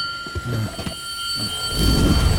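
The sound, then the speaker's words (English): The Bell of Icon, a magical bell in the trophy room of Dr. Strange's Sanctum Sanctorum said to open an interdimensional path to another plane of existence, rings out in a long, steady shimmer of high, clear overtones, with muffled low rumbling beneath that swells into a louder whooshing roar near the end. “Check out the Bell of Icon.”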